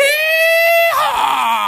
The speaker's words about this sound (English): All he does is say Schultz Ford 50 times and then screams yee-haw.